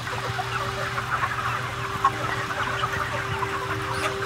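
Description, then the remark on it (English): A dense, continuous din of tens of thousands of chickens, crammed together and raised for food, clucking and chirping at once inside a shed, with a steady hum of machinery underneath and no voices. “In this shed, tens of thousands of chickens are raised for food every 2 months.”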